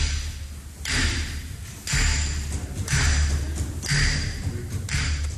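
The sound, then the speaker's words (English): Five sharp wooden knocks of the Speaker of the House's gavel striking its block as the Legislative Assembly in Cayman is adjourned for the last time, evenly spaced about a second apart, loud, each with a brief ringing tail over murmuring voices. “With those sounds, Speaker of the House, the Honorable Makeva Bush, banging his gavel”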